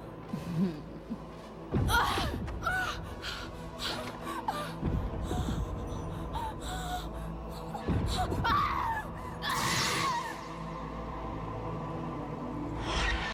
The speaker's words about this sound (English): Damn, 10 out of 10 scream.